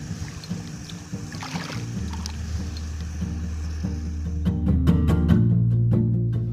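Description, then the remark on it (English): A canoe moving along a quiet river in the late afternoon, after close to four and a half hours of paddling, with a rapid coming up ahead. A steady low rumble and soft water sounds, then a few brief splashy strokes of the paddle toward the end. “Been paddling for, well, it must be close to four and a half hours.”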